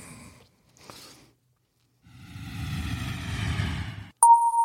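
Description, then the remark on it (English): An airplane sound effect: a roaring jet engine swells for about two seconds as if a plane passes overhead, then cuts off abruptly into a loud, steady electronic tone like a cabin chime. “Oh, Jim's getting on a plane.”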